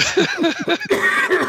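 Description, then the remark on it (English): Breathy bursts of laughter in quick rhythmic pulses, broken by a harsher cough-like burst midway, then more strained laughing and coughing together. “Making me laugh and cough and all that.”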